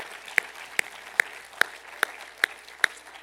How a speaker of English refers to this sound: In Jesus' name, would you just clap your hands to the Lord this morning?